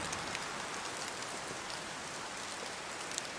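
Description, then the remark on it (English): Heavy rain pours down in a steady, dense hiss, with scattered droplet spatters pattering over it. It stays constant and unbroken throughout, with no voices. “It just started raining really heavily.”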